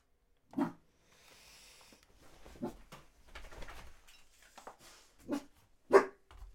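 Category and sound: animal, dog barking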